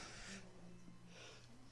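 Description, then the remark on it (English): Two short, breathy sneeze-like bursts, about a second apart, fairly soft, with no talking around them. “Bless you.”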